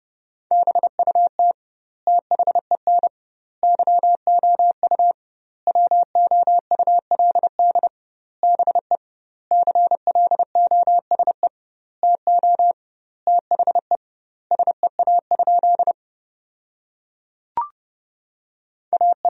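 Morse code at a brisk 30 words per minute, sending sentences built from the top 300 words with doubled word spacing: a single steady mid-pitched tone keyed in quick dits and dahs, grouped into words with clear pauses between them, with no voices.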